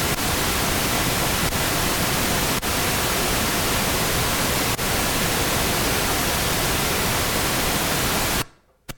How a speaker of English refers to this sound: Just a quick little thunderstorm.